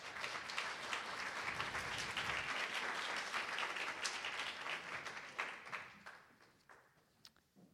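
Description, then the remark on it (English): A crowd applauds warmly at the event Giant Night, Artists Love Poets, a dense wash of many hands clapping at steady volume before gradually thinning out and fading to a few scattered claps at the end. “Let's give them all such a warm round of applause.”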